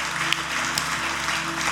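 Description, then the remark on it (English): An audience breaks into steady applause for people who have just received Jesus, a dense wash of many hands clapping at an even, fairly loud level with a low hum underneath. “Hey, can we give a round of applause for those people who received Jesus?”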